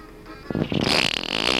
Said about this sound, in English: the farting leprechaun